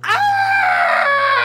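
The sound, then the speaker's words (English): A loud, sustained shriek from a human voice performing the monster Marabelle's scream as an axe sticks in her back, harsh and strained with a rising onset, held steady for over a second before trailing off abruptly. “The axe sticks in her back. Marabelle shrieks.”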